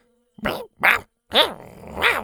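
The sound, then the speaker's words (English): Small dinosaurs growl and snarl in four short, raspy bursts, fairly loud, with brief pauses between the first few and a longer rumbling snarl at the end, as they bolt after a person, nipping at a plant hanging from her walking stick. “Shoot and Toot immediately bolted after her, nipping and growling at the plant hanging from her stick.”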